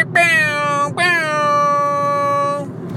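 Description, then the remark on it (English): A voice imitates a hip-hop air horn: a short blast followed by a longer held one, both loud, buzzy and nasal, each dipping slightly in pitch at the start before holding steady. “But would sound like the hip-hop air horn, like...”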